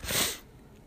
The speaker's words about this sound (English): Forgive my sniffling, I have a cold.